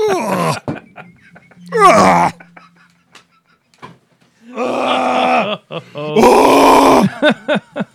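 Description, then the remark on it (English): A man's voice performs a mock anguished scream imitating Frank Castle, in several loud, strained wailing bursts separated by short pauses, the last cry the longest and harshest. “Frank Castle scream.”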